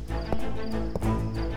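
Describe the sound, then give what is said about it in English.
Two heavy footsteps land about half a second apart, each a sharp, full-bodied thud over a steady low tonal hum that fills the background, as someone walks up to and reaches a doorstep. “Suzuki's footsteps echoed with determination as he reached Takahata's doorstep”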